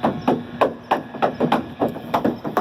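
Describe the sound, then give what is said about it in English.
A cow's hooves clatter along a water slide with no water in it, in a quick, uneven run of about nine hard, hollow knocks, each sharp and fairly loud, with no voices over them. “You can hear the cow's hooves clattering along, and you don't get to see the cow actually make it to the bottom of the slide and kasploosh into the water.”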